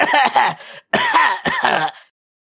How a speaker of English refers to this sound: The drawer opens with a loud squeal. I start coughing to cover it.